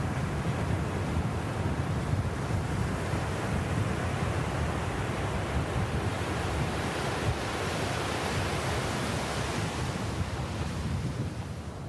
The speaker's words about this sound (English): That was lovely, and you could really hear the waves crashing on that far away shore.